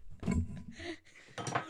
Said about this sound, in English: Oh, no. I broke a fucking glass. I'm so sorry.